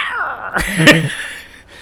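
A single short, high-pitched kitten meow rises and falls in pitch, fairly clear against a faint steady background hiss.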